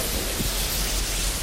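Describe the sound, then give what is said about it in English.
Steady rain showers pour outdoors, heard from under a canopy, a dense, even hiss of drops with a low rumble underneath, continuous, with no voices. “through the rain showers, I've managed to get the last remaining few shots on the box camera done”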